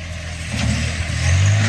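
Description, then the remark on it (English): Heavy tractor engines rumble steadily, a low droning growl that builds in loudness toward the end as the tractors push forward to knock down a monument. No voices are heard. “So now here come the tractors. Drive it down.”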